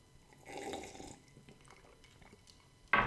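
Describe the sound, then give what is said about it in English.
A quiet slurping sip of hot black coffee lasting about a second, followed by faint mouth and swallowing sounds, then an abrupt loud burst right at the end. “I'm just going to have a sip of this beautiful black coffee.”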